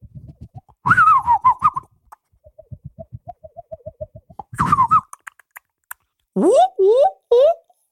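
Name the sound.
imitated bird calls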